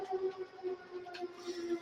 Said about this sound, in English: And then if the siren isn't enough, we're going to hear the sirens of the fire trucks as they pass by our house.